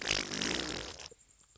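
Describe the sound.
A voice imitates a fart-like queef: one loud, sputtering, breathy burst lasting about a second, then cutting off abruptly into near silence.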